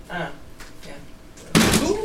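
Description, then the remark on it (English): A plastic water bottle lands with a sudden loud thud, followed by a sustained rustling slosh of water and crinkling plastic; faint voices are heard briefly beforehand. “you might have heard the water slosh, you might have heard a little clinking, you might have heard the plastic crinkling.”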